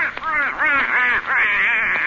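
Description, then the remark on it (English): A voice imitates a duck named Herman with rapid, buzzy quacking chatter, pitch bobbing up and down in a steady stream for about two seconds, fairly loud. “And if you're a good little duck, your mama will take you way up to the North Pole to see Santa Claus.”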